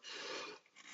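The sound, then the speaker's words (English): A single muffled sneeze, a breathy burst of noise lasting about half a second before trailing off into quiet, with no talking around it. “Bless you.”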